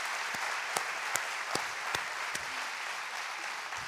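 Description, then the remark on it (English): A crowd applauds a woman coming onto the stage, a dense wash of clapping with sharper claps standing out in an even rhythm about twice a second, sustained throughout with no voices. “Would you give her a little hand clap of praise there?”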